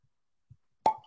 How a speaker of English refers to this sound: It's taking off the plastic. Got the pressure. Oh, that's a great cork pop.